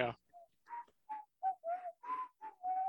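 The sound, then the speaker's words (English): Someone whistles a casual, breathy little tune of about eight short notes at a steady mid pitch, rising and dipping slightly, following a brief burst of noise at the start. “Innocent whistle.”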